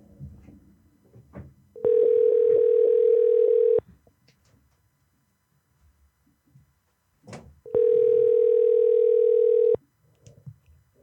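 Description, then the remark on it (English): A telephone ringing tone sounds twice on a forwarded call that goes unanswered, each a steady, loud mid-pitched hum lasting about two seconds, with several seconds of quiet shuffling and faint background noise between the rings. “Your call has been forwarded.”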